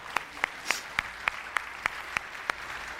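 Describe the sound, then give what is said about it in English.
An audience claps in steady unison, about nine sharp, evenly spaced claps at a brisk beat, with no voices over them. “I saw that you started the clap, so there's a points for you today.”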